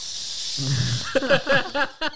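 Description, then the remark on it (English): A voice produces a steady airy hiss, imitating a snake-like fart, with a low voiced buzz and a run of short throaty vocal sounds layered over the hiss toward the end. “No, I understand the science of it, but sometimes it doesn't work because they become like snakes. They become like...”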